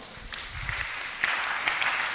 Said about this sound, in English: Clap for this boy.